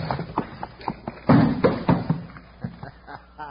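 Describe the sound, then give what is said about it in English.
A heavy wooden thud lands loudly as a trap door drops shut, surrounded by a scatter of smaller knocks and scuffs before and after. “Drop that trap door in place.”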